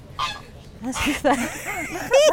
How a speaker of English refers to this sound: Look at him, that Canada goose. He just spread his wings out. They must be 4 feet across.